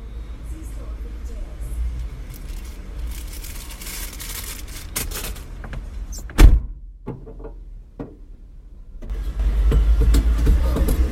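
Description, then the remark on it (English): Car sounds while someone puts gas in a car: steady outdoor noise, a sharp thud like a car door closing partway through, a few clicks, then a low engine rumble swelling near the end. “I go out to put the gas in my car.”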